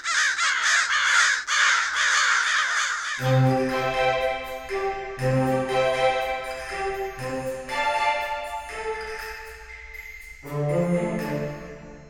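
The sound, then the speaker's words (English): Harsh, raspy crow caws burst out loudly in quick succession for a few seconds, then give way to sustained, tonal, musical notes that continue to the end. “Where'd you hear that? The crow's gossip.”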